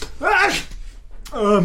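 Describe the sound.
An exaggerated, voiced sneeze with a rising and falling vocal wail that ends in a noisy burst, then a short pause and a second drawn-out vocal sound.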